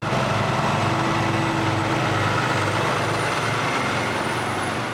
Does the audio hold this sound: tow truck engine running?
yes